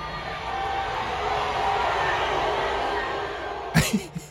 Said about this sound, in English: Wow. Listen to the crowd.